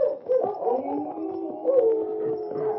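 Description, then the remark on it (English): Several dogs at Larson's cabin howl and whine together in long, overlapping wavering tones, a steady chorus lasting the whole stretch at moderate loudness with no talking. “For several minutes, the only sounds came from the horses' hoofs and the dogs at Larson's cabin.”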